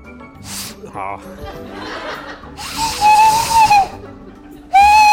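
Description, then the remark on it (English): A captain shows off a secret talent by imitating owl hoots with breathy, whistle-like tones: one wavering hoot, then a second louder one that cuts off at the end, amid soft chuckling and background chatter. “This captain is always a hoot when they bust out their secret talent, owl noises.”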